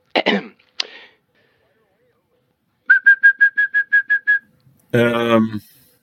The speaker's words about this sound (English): And now, the European song thrush, who usually sings in pairs from the tops of the trees.